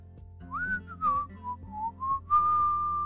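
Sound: person whistling a tune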